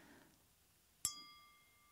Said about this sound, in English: It just has a different sound. And I tried to tap my like regular wine glass and it kind of had a similar sound, but not that nice.